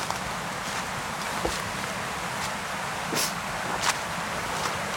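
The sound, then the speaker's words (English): Footsteps squelch through wet ground on a very boggy track, just past a stile leading out of a field, about six soft irregular steps, over a steady hiss of running water. No one speaks. “So now, crossing this stile, out of the field, and up into Oh, very boggy track. Hear the water.”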